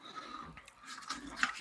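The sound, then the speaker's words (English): Soft, irregular chewing with moist, crunchy mouth noises in a few uneven bursts, the last one a bit sharper, heard on its own without any talking. “Yeah, now that I gave it a chew.”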